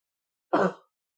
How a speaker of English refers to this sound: I appreciate you being conscious of not coughing over top of mine. I know, I'm trying to make sure that I'm only coughing during easy places to cut.